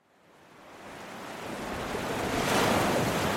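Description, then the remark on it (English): Atlantic Ocean waves wash onto a shore at San Luis, Senegal, a broad roar of surf that builds steadily from quiet to a full, hissing crash over a few seconds, with no voices. “At the edge of the Atlantic Ocean, the city of San Luis, Senegal, is sandwiched between the river and the sea.”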